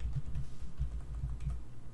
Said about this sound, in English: Is that you typing in the background there, Jack? Yeah, it's me.